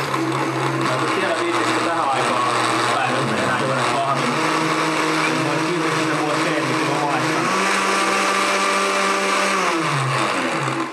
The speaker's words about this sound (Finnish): Mut pistetään pikkuinen pyöräytys blenderillä